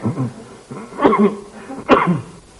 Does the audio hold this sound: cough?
yes